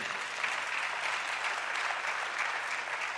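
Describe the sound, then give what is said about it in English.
A church audience gives the Lord a hand clap after the choir sings, the dense patter of many hands blending into a continuous, even wash of applause that holds its level from start to finish with no voices over it. “Let's give the Lord a hand clap for him.”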